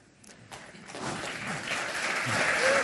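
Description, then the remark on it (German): Restrained audience applause, a dense patter of clapping that starts thin and gradually swells, staying moderate in volume throughout without any cheering. “Behalten Applaus, aber immerhin.”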